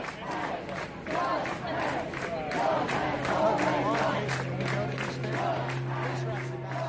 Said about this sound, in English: And then there's all these pastors that were chanting and clapping, "Love has already won. Love has, love has, love has already won."